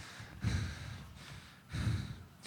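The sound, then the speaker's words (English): Heavy breathing of two men: two deep, rasping breaths about a second apart, each a loud breathy rush, with no talking. “the only sound they now hear is their heavy breathing.”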